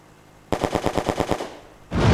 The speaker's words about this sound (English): Amanda makes it to the cockpit, but more bullets penetrate through the cabin.